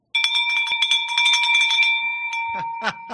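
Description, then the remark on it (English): A handbell is rung rapidly and loudly, its bright clanging strikes blurring into a sustained ringing tone before someone briefly calls out near the end. “Ring that bell.”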